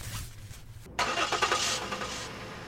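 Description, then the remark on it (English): A car engine cranks with a rapid, rhythmic churning that kicks in abruptly after a second of low rumble, then stops; loud, with no voices. “All right, it first started making this sound like it was cranking up, and then it stopped.”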